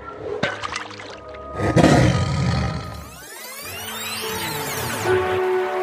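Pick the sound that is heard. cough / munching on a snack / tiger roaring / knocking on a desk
tiger roaring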